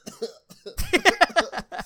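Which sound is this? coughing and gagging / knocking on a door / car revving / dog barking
coughing and gagging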